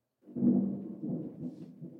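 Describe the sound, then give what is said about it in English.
A low rumble of thunder rolls in after a brief silence, swelling and fading in uneven waves for a couple of seconds, fairly faint with no voices. “Can you hear the thunder? I can hear the thunder.”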